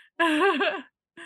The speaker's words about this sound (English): Sorry, I was yawning, girly. Oh, we yawn together. Oh my gosh. Oh my gosh. Yawning together.